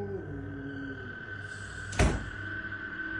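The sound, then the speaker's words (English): A single dull thump of a door swinging shut lands about two seconds in over a steady electrical hum and faint background drone. Nobody speaks. “Come on, close the door.”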